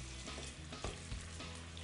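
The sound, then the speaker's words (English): Chicken thighs sizzle steadily as they are browned in a hot pan before finishing in the oven, a dense crackling hiss with a couple of brief louder pops and a low rumbling undertone, no voices. “Just gonna brown those off a little bit.”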